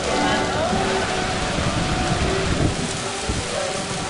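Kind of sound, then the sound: nature, heavy tropical rain downpour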